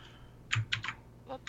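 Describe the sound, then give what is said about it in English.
A few quick computer keyboard keystrokes clack in an uneven burst as someone posts a link, four or five sharp taps spread over a second and a half against a low background hum, with no voices. “I don't know how to work my keyboard.”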